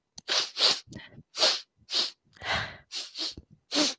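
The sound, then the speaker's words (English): A run of about nine short, breathy sniffs through the nose, each a quick hissing intake with brief pauses between, coming in an uneven rhythm with no talking. “It's basically any kind of sniffing, you know.”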